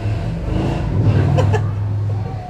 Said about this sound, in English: This is a nightly thing. the neighbor revving the truck in the background? It's a motorcycle with a really loud stereo on it.